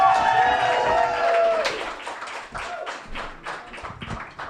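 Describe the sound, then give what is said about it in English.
An audience breaks into applause and cheering as a guest performer is introduced, with whoops and raised voices at first, then settling into steady, dense clapping with some stamping thuds underneath. “a huge round of applause with your hands, your feet, and anything else that comes nearby you, Miss Nell Frizzell!”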